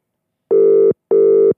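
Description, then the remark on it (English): A telephone ringback tone sounds on an outgoing call: two short, steady electronic buzzes in quick succession, clear, with silence around them and no one speaking. “Is that ring? We're ringing somebody.”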